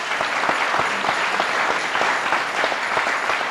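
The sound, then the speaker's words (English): A crowd applauds steadily for a woman called up from the audience to speak at a meeting: a dense, even patter of many hands clapping at a constant loudness for several seconds, with no voices standing out. “Give Margaret a jolly good clap.”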